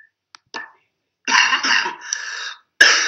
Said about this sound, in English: What? You coughing.